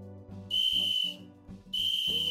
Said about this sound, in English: What about the whistle? We need to blow the Captain Blade whistle. Blow it now.